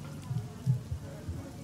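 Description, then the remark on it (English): Soft, steady rain falls continuously, with a low, muffled rumble swelling and fading underneath. It's fairly quiet, with no voices. “Well, I approach the crowd, pulling my cloak overhead to protect me from the rain.”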